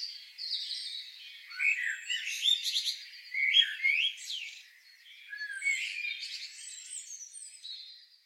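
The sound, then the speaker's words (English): Several birds sing and chirp together in a steady, overlapping chorus of high, bright warbles and tweets, moderately loud, with no voices present. “Tuned into birdsong more in the past year than ever before?”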